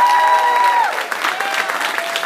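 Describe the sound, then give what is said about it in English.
The audience at the IHSAA Student Leadership Conference applauds loudly and steadily, a dense wash of clapping that fills the whole clip, with a brief high whistle-like tone over the first second. “Give yourselves one more last round of applause.”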